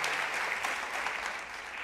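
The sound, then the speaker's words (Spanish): An audience at the Presencia Viva church service applauds God steadily, a dense, continuous wash of many hands clapping at fairly even loudness, with no voices standing out. “¿Por qué no le damos un fuerte aplauso a nuestro Dios?”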